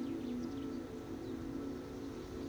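Faint, scattered bird calls over a steady, low continuous rumble, with no voices present; birds busy building a nest in a tree, with a gentle wind blowing the branches.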